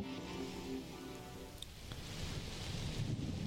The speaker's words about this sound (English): Dude, all it's been is wind blowing.